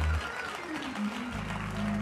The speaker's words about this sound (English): One more time, clap your hands unto the Lord and give him praise.